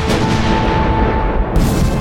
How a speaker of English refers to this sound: Cannon to the right of them. Cannon to the left of them. Cannon in front of them. Volley! And thundered, stormed at with shot and shell